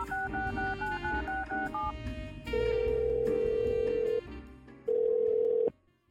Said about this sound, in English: He takes out his phone and dials.